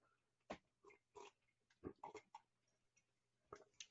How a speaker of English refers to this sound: All right, another sip here. I don't like when this stuff gets warm or cold.